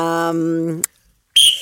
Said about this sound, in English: Ring alarm. That's a penalty.